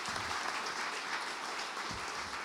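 A crowd claps steadily throughout, a dense, continuous wash of many hands with no pauses or single distinct claps, fairly loud and unbroken for the whole stretch.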